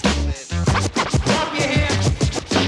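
Turntable scratching in quick, choppy bursts, the record dragged back and forth so its pitch swoops up and down. Loud and rhythmic, with a steady low bass pulse beneath and no talking.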